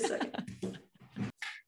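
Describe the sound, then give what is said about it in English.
A female dog named Ray, the office dog, makes a few short, breathy vocal bursts as she comes over to say hello, huffing and whining in quick succession over under two seconds, moderately loud, with no talking. “My office manager wants to say hello. Is that okay? I see his tail.”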